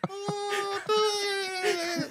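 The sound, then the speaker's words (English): A voice imitates a whale scream: a long, steady, high wailing tone, briefly broken once, then held again before sliding down at the end. No other talk is heard. “Whoa, what's that? That's the whale scream, right?”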